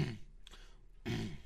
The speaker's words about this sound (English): Let me just clear my throat for a little bit.